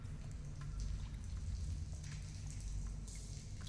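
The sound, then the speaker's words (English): Steady rain patters and ticks throughout, half buried under a loud, continuous low mechanical hum. Nobody speaks, and the overall level stays fairly quiet and even. “And then maybe you might hear... Rain?”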